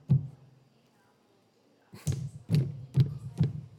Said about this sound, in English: Something like that. And it's banging on the door, and then eventually it crashes into the door, and it says, hee hee hee.